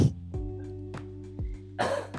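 A few short, throaty coughs from a sick person, spaced irregularly and fairly soft, with the last one a little harsher and breathier. No one speaks.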